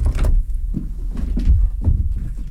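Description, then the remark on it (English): A heavy door swings open with a deep, rumbling scrape and a few dull thuds as someone exits, fairly loud, with no voices. “But you didn't let the door close behind you.”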